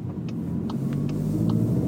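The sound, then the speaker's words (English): A deep, steady V8 engine rumble from a Jeep Wrangler 392 fills the cabin while driving, a low throaty drone with faint ticking and rattles on top, continuous with no one talking. “This Wrangler we're driving, the 392, is also a ridiculous and great muscle car.”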